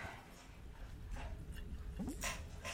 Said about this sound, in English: You get the dog chewing ASMR because she has decided that she's hungry now. Both of them are actually, they're competing with each other.